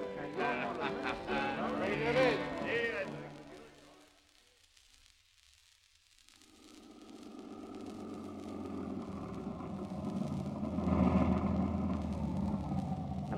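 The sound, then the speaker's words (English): Voices are heard briefly at first, then a short lull before a car engine rises into a steady, low rumble as the vehicle drives along, driving a man home. “I better drive him home.”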